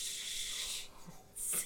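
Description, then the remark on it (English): A person imitates a rattlesnake's rattle with their mouth: a long, steady, high hissing buzz, then a short pause and a second, briefer and brighter burst. “Rattlesnake. Oh, boom! Was that your best rattle?”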